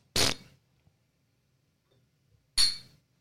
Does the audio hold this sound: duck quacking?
no